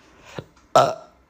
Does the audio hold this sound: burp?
yes